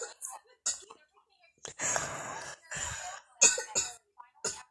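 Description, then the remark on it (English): Several loud coughs burst out at irregular intervals, sounding muffled as someone coughs into a stuffed ice bear toy, with short quiet gaps and small breathy vocal noises between them. “Why are you coughing into the ice bear?”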